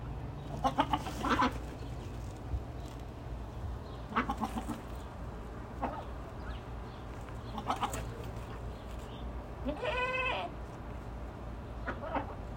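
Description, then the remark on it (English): A goat bleats several times at irregular intervals, loud, the last call a long wavering one, over a steady low background hum with no talking. “You're not a normal goat, no.”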